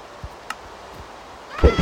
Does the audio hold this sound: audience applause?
no